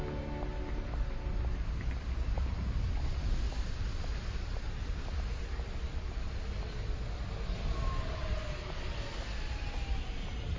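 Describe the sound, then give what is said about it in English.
Steady outdoor city street ambience while walking up to a supermarket: a continuous low rumble of traffic with faint scattered clatter and mechanical tones, no voices, at an even moderate level throughout. “Now we are on the streets of a city, walking up to the Metro supermarket, where we will now attempt to shop, pay for the goods, and leave without loss of life.”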